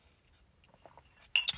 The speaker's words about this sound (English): I'm taking a sip.